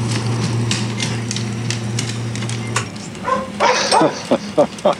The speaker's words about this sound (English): So I'm going to go ahead and add all of them at full volume. I just added the printer, people, coffee machine, the room tone, rain on a window, an open window, the office dog, and keyboards.